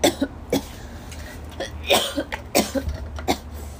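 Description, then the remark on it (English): A person recording outside coughs in a series of short, harsh coughs in irregular bursts, some sharper and louder than others, over a steady low rumble of background noise. Nobody speaks. “Let's get into this before I have a freaking cough attack.”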